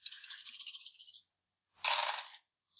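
Nine dice rolled in a tabletop role-playing game rattle and clatter in a rapid, crisp burst lasting over a second. After a short pause comes a second, louder clatter of tumbling dice, with no voices.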